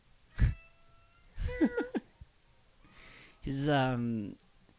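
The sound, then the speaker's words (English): A male cat meows several times: a short chirp, a quick run of clipped meows, then one longer drawn-out meow, with quiet pauses between. “He's very talkative sometimes.”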